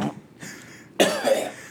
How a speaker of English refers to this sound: Coughing into the microphones.